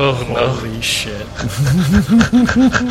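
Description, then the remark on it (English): A person imitates a panting puppy with quick, rhythmic voiced huffs, about eight in a row, loud, after a brief stretch of murmured voices and breathy noise. “You feel like a puppy. What? And you begin panting and drop to all fours.”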